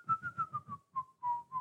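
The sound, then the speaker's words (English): A person whistles the Gladiators tune: five quick, evenly spaced notes drifting slightly downward, then a few longer held notes, with breathy puffs under each one and no talking. “I could whistle the gladiators thing.”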